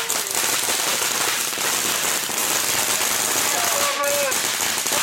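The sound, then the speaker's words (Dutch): Dense, continuous crackling and popping from firecrackers and fireworks set off by celebrating young supporters after a 4-3 goal at a match fills the whole clip, loud, with a faint whistling tone rising near the end and crowd noise underneath. “Ze steken weer een hoop vuurwerk af.”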